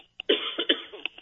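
A short cough burst: a brief catch followed by a rough, raspy hack with a couple of trailing throaty pulses, heard alone without talking.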